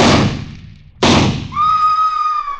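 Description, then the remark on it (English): Two loud, sharp rifle shots, fired at a woman, about a second apart, each trailing off in a rumbling decay, followed by a steady, high-pitched sustained tone that holds to the end. “I raised my rifle and...”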